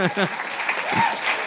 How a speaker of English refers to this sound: It's nice. People don't usually clap at my witty comebacks. But they should.